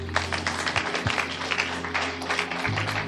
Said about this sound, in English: Okay. Thank you, sir. Clap your hands for God.